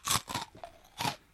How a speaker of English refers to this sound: Why do you pick the most crunchy a snack for recording?